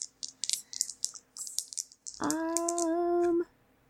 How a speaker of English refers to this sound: I'm rolling my dice. In anticipation.